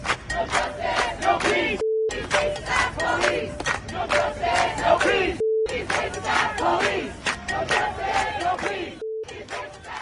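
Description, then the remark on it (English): A large protest crowd in New York chants loudly in rhythmic unison, the shouted slogan "No justice, no peace" repeating steadily, broken three times by brief, steady mid-pitched censor beeps over an expletive. “Here's the left out chanting in New York.”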